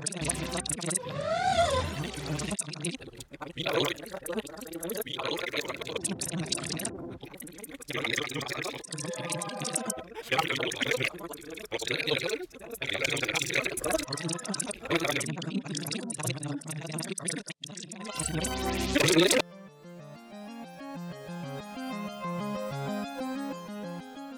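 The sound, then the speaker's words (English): Sped-up, reversed recording: a dense, garbled stream of chirping, gurgling chatter with rapid squeaky sweeps, running about nineteen seconds before abruptly giving way to a steady, tinkling musical pattern. “Scienceology is a production of Funnier Die News, and as always, we end by playing the episode you just heard backwards at 10 times the speed.”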